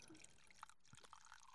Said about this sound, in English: And we're pouring some wine right now.